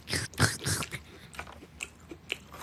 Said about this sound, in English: Mouth open while she chews.